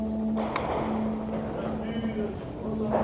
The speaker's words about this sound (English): Okay. Into the basement. Yeah, I can hear it still. You can clearly hear the helicopter now. Jesus. That was close.